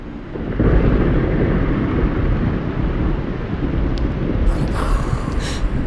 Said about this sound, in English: Looks like the fake rainstorm is real this time.